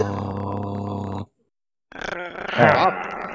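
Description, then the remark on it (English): People imitate growls with their voices: a steady, buzzing vocal growl, a brief silence, then a rougher, rising round of overlapping growls and grunts that grows louder near the end. “And you all growl at each other inside the inn.”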